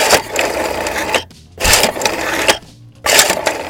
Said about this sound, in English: What is that? You know that sound, don't you? It's a telephone. It's a rotary phone. Rotary dial telephone.